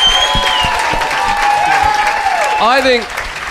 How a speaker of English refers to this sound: Guys, big round of applause for Jayasinha, Adam Hills, Hamish Blake, can I just Will say, Anderson.